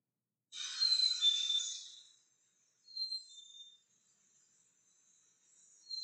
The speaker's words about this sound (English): But just bear with me a second because I'm going to play the theme tune for the black-capped chickadee.